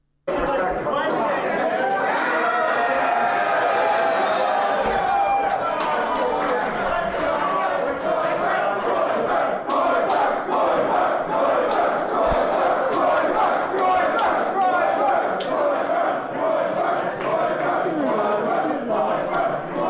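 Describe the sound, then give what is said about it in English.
A dense, steady crowd roar at CPAC, a conservative conference, as a man is kicked out: many voices shouting and cheering for him at once, with scattered higher yells rising above the noisy chatter. “Let's watch the gropers cheer for him like he's a rock star as he gets kicked out of CPAC.”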